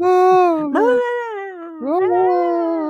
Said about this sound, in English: I'm picturing everything that happens in Passion of the Christ, but just some big old like dog, some kind of dog, like a Rottweiler, one of those real massive dogs in place of Jesus. Hear the howling.